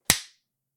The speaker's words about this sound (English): That's the biggest clap you've ever done.